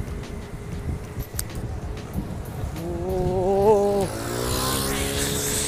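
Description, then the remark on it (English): A scooter's small two-stroke engine whines up loudly and close in street traffic, its pitch climbing as the scooter rushes past and cuts in ahead, then drops into a rougher buzzing roar amid a steady rumble of traffic. “Whoa, scooter just cut me up.”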